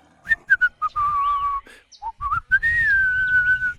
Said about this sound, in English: She whistled on her way out of the bamboo forest.